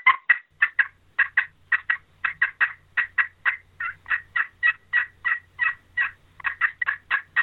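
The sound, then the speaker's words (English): A Woodhaven Ninja anodized aluminum friction turkey call, used as a locator call, yelps in a steady, rapid series of high-pitched, raspy notes, loud, with no talking. “So I will not go in the woods without some type of aluminum surface call for locating turkeys.”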